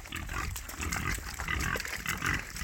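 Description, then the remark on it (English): Pigs oink and grunt in a steady, overlapping jumble of short, low snorts that carries on without pause, fairly loud throughout, with no one speaking. “Hey, pig, pig.”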